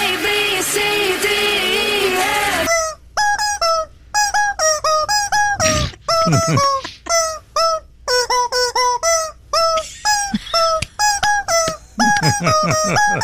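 A pop song melody honked out on squeaking rubber chickens, each shrill squawk a separate note in a bouncy rhythm, loud, opening with a dense burst of overlapping squeals.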